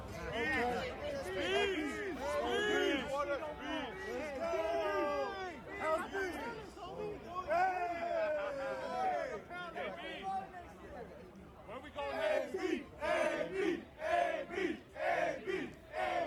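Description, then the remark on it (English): About twelve people yell and shout over one another continuously, their raised voices overlapping in loud, ragged bursts with a few distinct cries rising above the clamor. “There was to literally like that. 12 people yelling.”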